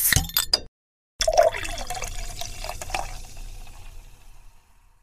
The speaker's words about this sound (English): It's a wet hop beer. So it's wet hop season, so I'm very excited about the wet hop stuff that's coming out. So well, thanks. We do need a beer for toast, roast, and pour. Let's do it.